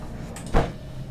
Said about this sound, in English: Wait. Oh my God, the door is opening. First, you have to close the door. And then press lock.